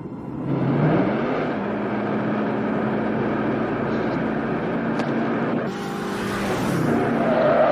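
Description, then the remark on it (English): The engine of the car Christine hums steadily throughout as it drives along, with the pitch shifting slightly as it changes speed and a brief rise in hiss midway. “Is nothing finer than being behind the wheel of your own car.”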